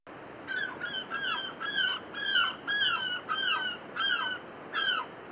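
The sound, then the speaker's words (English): An Americana chicken named Chipmunk calls out in a steady series of about nine harsh, squawking cries, fairly loud, with short gaps between them and no one talking. “And our co-host today is Chipmunk, the Americana chicken, coming back for the third time at The Bird Show.”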